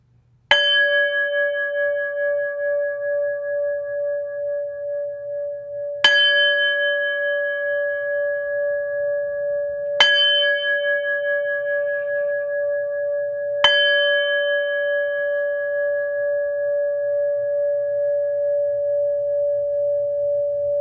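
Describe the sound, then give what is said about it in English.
A meditation bell is struck four times at unhurried, slightly uneven intervals to close a meditation. Each strike leaves a bright, steady mid-pitched tone that rings on and blends into the next, with no talking. “Please allow me to close this meditation by ringing in the resonant sound of the four corners.”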